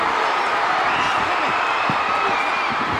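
A huge wrestling crowd at Texas Stadium roars with cheers as Fritz gets tagged in, a dense, steady wall of noise that stays loud across the whole stretch, with scattered shouts and claps inside the din.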